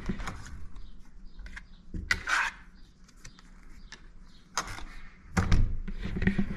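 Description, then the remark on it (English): The door of hotel room 308 in York Beach is unlocked with a key card: a few sharp mechanical clicks and a brief electronic chirp, then the latch and handle rattle as the door opens. “We had problems with this earlier. We actually had to go back down to reception to get new keys. It worked.”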